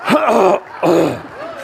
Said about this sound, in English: I can finally clear my throat. I was choking because if I clear my throat while she was speaking, she'd look at me and say, is that a signal that I have to stop or something? It was stuck right here.